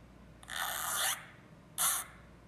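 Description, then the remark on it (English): A zipper is pulled twice: a longer rasping zip of about half a second, then a shorter, quicker one, both bright and buzzy against a quiet background with no talking. “That is a zipper.”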